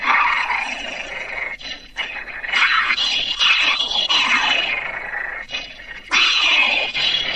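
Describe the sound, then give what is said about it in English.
Voice actor Frank Welker, directed by a voice director in an outtake session, imitates the angry, frustrated Transformers character Ravage, letting out a string of loud growling roars and snarls with short breaks between them, rough, sullen and animal-like. “Ravage, angry, frustrated roars. Sullen-like.”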